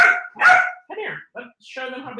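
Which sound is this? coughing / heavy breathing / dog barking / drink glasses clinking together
dog barking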